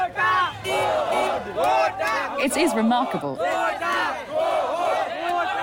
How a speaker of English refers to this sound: Surrounded by thousands of people shouting, got to go home, got to go to jail.